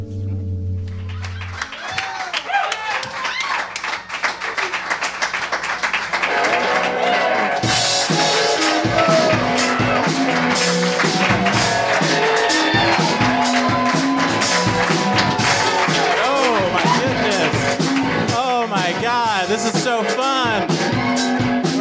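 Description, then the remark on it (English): A live show audience at Union Hall claps and cheers, the noise swelling after a few seconds into a dense, steady roar of applause with whoops and shouting voices that continues to the end. “Look at this beautiful crowd.”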